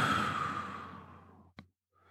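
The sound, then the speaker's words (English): A long, deep exhalation during a breathing exercise, breathy, fading steadily over about a second and a half, followed by a brief soft click and near silence. “All the way out.”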